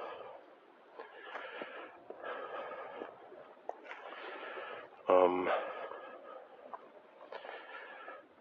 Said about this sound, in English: Breathing heavy.